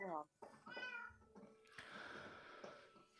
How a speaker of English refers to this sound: Okay, you're going to dive down there into the cat land. All right, here come the cats.